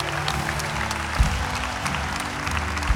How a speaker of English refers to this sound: Come on, keep clapping, church. This is a big deal, man.